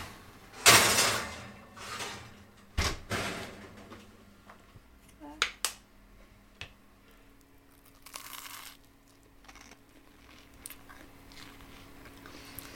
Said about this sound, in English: I cannot believe Bernardine Evaristo is about to knock on my door.